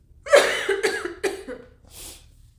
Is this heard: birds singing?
no